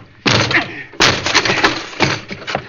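A locked door is broken down: two heavy, loud crashing impacts about a second apart, each followed by a rough burst of splintering, clattering noise that trails off.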